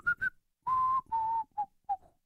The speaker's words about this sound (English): This is the loudest I can whistle. I whistle while I work. I do. What's the loudest you can whistle?